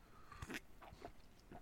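Several quick, wet slurping sips from a cup of tea, soft and close, with brief pauses between them and no talking.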